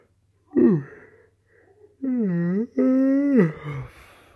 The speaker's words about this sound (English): I heard yawning on air.